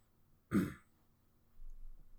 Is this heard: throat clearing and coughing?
yes